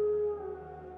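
A lone wolf howl holds one steady, drawn-out pitched note for about a second, moderately quiet and slowly fading, with no voices around it.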